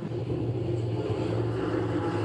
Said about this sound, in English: That's quite a motorcycle. Yeah, I just want to apologize. We have a occasional motorcycle and a tuk-tuk here in Thailand where we're recording, so...